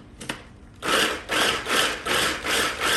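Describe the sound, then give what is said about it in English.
A couple of faint clicks as the blade engages, then a food processor pulsing garlic in about six quick, evenly spaced, fairly loud whirring bursts, with no one talking. “And we're gonna pulse it”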